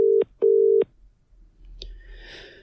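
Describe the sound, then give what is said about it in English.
Two steady telephone ringing tones, one short and one longer, play clearly over the line, followed by a click as the call connects and faint line noise. “Let's see if he answers the phone to me.”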